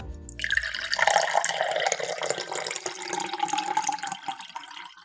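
Water runs steadily from a tap, a broad continuous rush with splashing and trickling textures, fairly close and moderately loud, with no voices.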